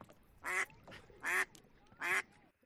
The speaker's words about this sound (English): So I also, that was a duck, by the way. Yeah, it's a duck.